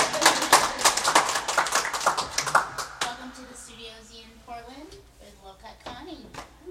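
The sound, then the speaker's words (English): A crowd at an event in Portland, Maine applauds with dense, rapid clapping for a few seconds, then the applause thins out as scattered voices and murmurs carry on over it. “Yeah, you can clap.”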